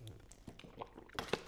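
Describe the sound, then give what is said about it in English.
Someone takes a quiet sip of water, with a few soft wet slurping and gulping clicks that grow a little sharper toward the end. No one speaks. “Let me just drink some water.”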